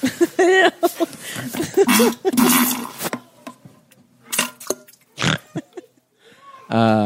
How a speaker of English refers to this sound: That was sent to us. That's a listener submitted fart and poo just for you guys. Okay? And I, you know, at first listen, I asked you, well, is this a fart? Right. Or a shit?